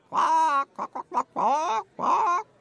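Loud chicken clucks and squawks: a long drawn-out bawk, a few quick short clucks, then two more stretched cackles, with no talking.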